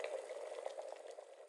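Water boils over a fire at a steady rolling simmer, a dense, continuous bubbling with quick pops and gurgles, fairly quiet, with no voices.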